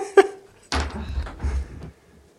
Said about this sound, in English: Hold on. I have to pause. I will be right back. I have somebody knocking at my door.